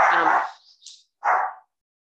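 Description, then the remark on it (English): A dog barks twice, fairly loud: a longer, rough first bark, a short pause, then a second sharp bark, with no one talking over it. “Sorry, naughty dog.”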